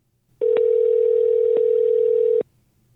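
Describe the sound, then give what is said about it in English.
A telephone line tone as a call is placed to Calibrated Power Solutions Moto Ops: one loud, steady, mid-pitched electronic hum that holds for about two seconds and then cuts off, with no one speaking. “All right, well, let's give them a call.”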